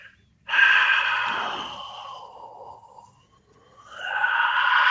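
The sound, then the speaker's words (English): A voice imitates heavy breathing heard on a camera's microphone: a long, loud, airy exhale that trails off, a brief pause, then another rushing breath begins. No words are spoken. “It wasn't wind. It wasn't anything like that. Yeah. It was just somebody breathing.”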